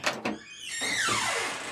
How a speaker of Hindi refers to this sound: थोड़ी देर बाद इसी फ्लैट का दरवाजा खुलता है।